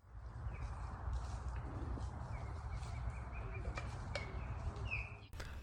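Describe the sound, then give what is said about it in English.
Great blue heron deep bill clapping at a nesting colony, birds at their nests greeting mates or calling: a few sharp, hollow wooden clacks at irregular intervals, set against a steady low outdoor rumble with faint bird chirps in the background. “it's just sort of like that, like a deep bill clap”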